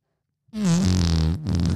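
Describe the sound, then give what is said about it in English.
A voice imitates a friend's long fart, a buzzing, wobbling low raspberry lasting over a second with a brief break near the end before it sputters on, loud and alone. “It's like a moist fart in your face.”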